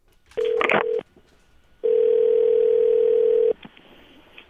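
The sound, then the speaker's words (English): A steady, mid-pitched telephone dial tone sounds briefly with quick dialing blips over it, cuts out, then returns as a longer unbroken hum before stopping. It is a call back to the Furnas County Inn after the line dropped. No one speaks. “Oh, yeah, we'll give him a quick buzz back here now.”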